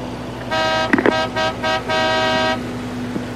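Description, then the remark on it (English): A car horn honks in a rapid series of blasts: one long toot, then several short stuttering beeps and a final sustained blare, over a low engine rumble, with no one speaking. “Stop honking at me.”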